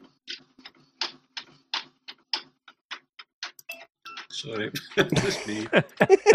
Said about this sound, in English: Somebody set a metronome. Someone set a metronome off. Tick tock, tick tock, tick tock. That's my printer. It's just switched on.